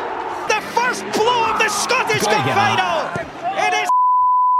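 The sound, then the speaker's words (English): Excited, overlapping voices with crowd noise from Scottish Cup final goal commentary are abruptly cut off by a steady, high censor bleep over swearing that holds for nearly a second at the end, loud and clean. “And that it's beep? That swearing stuff.”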